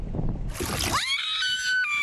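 A rush of splashing water and wind gives way to a loud, high-pitched scream that rises sharply and holds for over a second, as a family out fishing off the coast of Australia shrieks together in fear while a great white shark about 14 feet long circles their boat.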